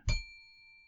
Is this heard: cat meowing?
no